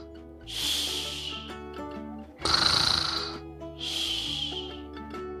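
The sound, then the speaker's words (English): Three long, rasping snores of a sleeping bear, each a loud breathy roar with a hissy edge and the middle one harsher, rise over soft, steady music underneath. No one speaks. “But the bear snores on.”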